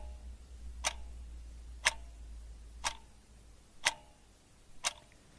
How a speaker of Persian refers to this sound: چشماتون رو ببندین و صدای تیک تاک ساعت رو گوش کنین.